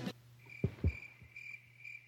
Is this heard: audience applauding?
no